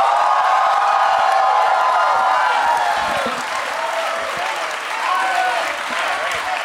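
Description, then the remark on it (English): A large live audience applauds steadily with scattered cheers and whoops, a dense, loud wash of clapping that holds for several seconds with crowd voices mixed in. “Yeah, look at this crowd.”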